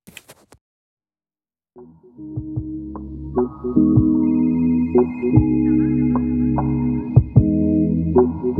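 A few faint clicks, a short silence, then a phone ringtone swells in and plays steadily for several seconds as a call connects, a layered electronic tone, fairly loud, with no one talking.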